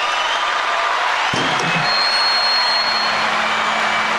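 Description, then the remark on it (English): A canned applause effect: a dense, steady wash of crowd clapping and cheering that runs loud and unbroken for about four seconds, with a brief low thump early on. “Where's that fucking applause drops, people?”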